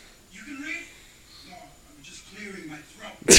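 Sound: throat clearing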